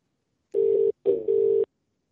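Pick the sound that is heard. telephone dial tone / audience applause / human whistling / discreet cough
telephone dial tone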